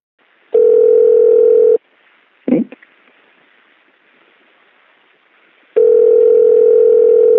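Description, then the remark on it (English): A steady electronic telephone dial tone sounds for about a second, goes quiet apart from a brief click and faint line hiss, then the same tone returns, clear over the line, as a phone number is dialed to call someone. “Shall we give him a call and find out how it all went down?”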